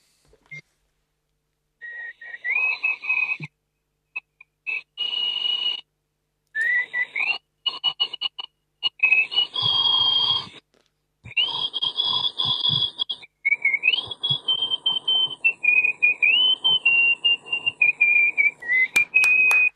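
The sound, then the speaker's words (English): A loud, shrill nose whistle by the world's loudest nose whistler carries the children's song "If You're Happy and You Know It" in short bursty phrases, the pitch stepping up and down, with breathy, wheezy noise beneath each note and brief gaps between phrases. “Ladies and gentlemen, the world's loudest nose whistler,”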